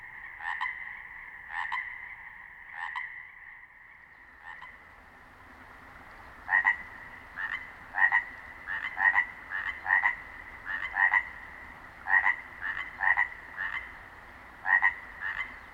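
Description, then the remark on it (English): Two frogs trade short, throaty croaks back and forth, one steady at first, then a quicker, busier caller joining in over the soft running-water hiss of a brook, clear with no voices. “Okay, I like this soundscape, but, you know, wouldn't it be great to find two frogs singing back and forth, maybe with the sound of a brook in the background?”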